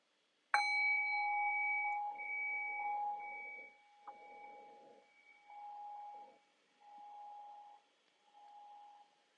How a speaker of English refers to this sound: So I'll ring the bell again and I'll guide our 20-minute body scanning practice.